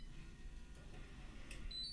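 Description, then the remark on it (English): After a 4-digit code is entered and lock is pressed, an electronic lock gives off a faint, high-pitched beep like a microwave's, a steady tone near the end that follows a couple of soft clicks over low background hum. “Oh, no, it sounded like a microwave in there.”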